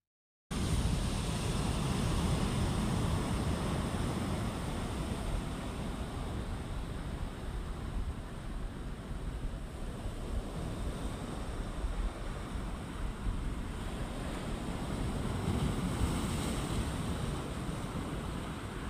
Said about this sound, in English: So hopefully you can hear that there are much bigger waves there. We're on the coast at Riverton, and it's an open bay. It used to be a really big fishing village, and you're looking out to Stewart Island, and then the South Pole, actually.